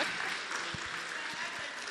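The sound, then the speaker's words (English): A crowd claps steadily for about two seconds, a dense, even wash of many hands at moderate loudness, with a faint murmur of voices mixed in. “Clap for me, clap for me, clap for me.”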